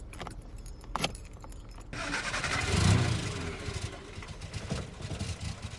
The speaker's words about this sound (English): The immediate drone of the air conditioner caused the car to stall.